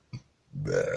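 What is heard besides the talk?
coughing up phlegm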